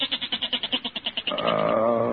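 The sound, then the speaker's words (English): A single goat bleats, a quavering, stuttering baa that breaks into rapid pulses before settling into a steadier, drawn-out cry. No other sounds intrude. “Oh, listen to that goat, Peg. He's been baaing all night.”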